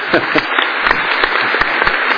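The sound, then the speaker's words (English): A crowd applauds steadily, dense overlapping hand claps forming a loud, continuous rattle with sharper individual claps popping out irregularly throughout. “I'm clapping you.”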